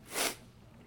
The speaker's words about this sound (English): Sorry for all my sniffling.